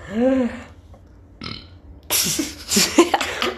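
burp

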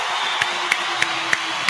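applause and cheering

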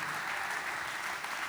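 audience clapping

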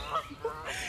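geese honking

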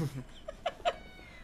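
cat meowing

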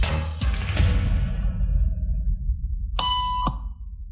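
electronic beep tone

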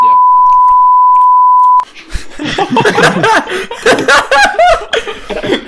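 censor bleep tone

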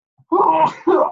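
sneeze

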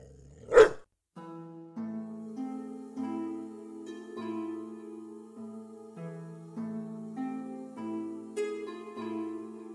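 dog barking loudly

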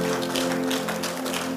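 audience clapping hands

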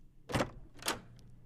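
double doors opening

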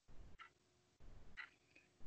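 clock ticking countdown timer

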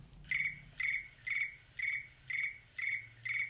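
phone alarm ringtone

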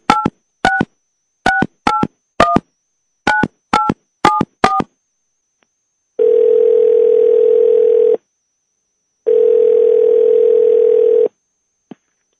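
phone call ringing tone

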